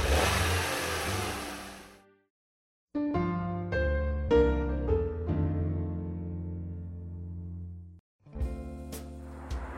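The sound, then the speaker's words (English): A Studebaker car engine starts up and revs hard, climbing through several gear changes as it pulls away, loud, then briefly cuts out before revving again. “I drove up to the electronic intercom.”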